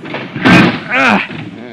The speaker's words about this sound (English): This door's smashed. We'll have to pry it open. Well, maybe if we both pull on it.